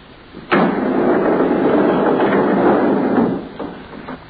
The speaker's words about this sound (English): And unhurriedly, he pushed the sliding slab into the compartment and closed the door marked 12.